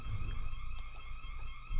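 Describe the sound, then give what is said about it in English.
A building alarm coming from a box right outside the door blares in a steady, unbroken electronic tone, its shrill pitch holding constant throughout, with a low background rumble underneath and no one speaking. “Hey, there's an alarm coming out of a box that I've never seen before.”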